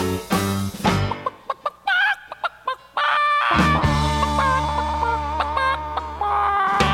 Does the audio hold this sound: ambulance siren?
no